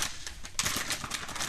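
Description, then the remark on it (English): A crumpled, securely fastened paper bag holding candy crinkles and rustles as it is pulled open, a dense crackling that starts soft and grows louder and busier partway through, with no voices. “It looks like to the garbage because it couldn't be more crumpled up. It is securely fastened.”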